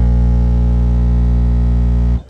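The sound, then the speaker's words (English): A car stereo's bass burp in a car audio sound-pressure competition, heard from outside the car: one loud, distorted low tone with heavy harmonics holds steady for about two seconds, then cuts off abruptly. “That's the burp, heard from outside the car.”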